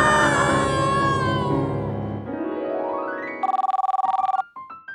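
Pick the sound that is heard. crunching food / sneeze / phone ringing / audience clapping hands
phone ringing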